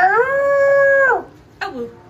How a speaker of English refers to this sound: Yeah, see, she ruined it. You have to let Naya fucking finish on a howl.